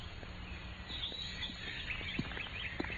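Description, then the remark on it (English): Faint birds chirp and twitter in scattered short calls over a soft, steady outdoor hush in spring, with no voices present. “The music of the birds and the fresh breath of the spring.”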